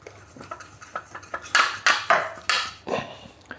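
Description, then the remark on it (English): Cutting pastry out with a mug for the sides and a glass for the lids: a run of soft taps gives way to several louder knocks and clatters of glass and crockery on a worktop, with no talking. “I'll cut the pastry out.”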